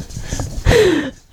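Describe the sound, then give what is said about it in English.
A female puppy lets out a short, falling whine, sliding down in pitch for about half a second, with brief rustling noises before and after. “And we got our hands full with a puppy.”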